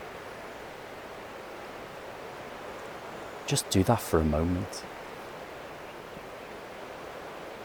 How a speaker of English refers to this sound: Let's be silent and listen to this river in the distance, how it's moving and changing, just like you and me.